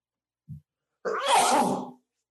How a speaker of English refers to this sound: Bless you. You can take care of that in the edits. He can take the sneeze out.